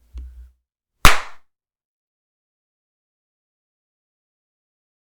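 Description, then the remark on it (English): One sharp, loud hand clap, made to sync audio while setting up a recording, rings out, followed by a brief decay and then silence, with a faint low rumble just before it. “We didn't clap, so 3. We need to clap.”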